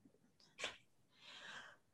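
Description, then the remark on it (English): A person acts out a single fake sneeze, a sharp nasal burst followed by a longer breathy hiss, moderately loud, with no talking. “Would you rather have to fake sneeze or fake vomit in a scene?”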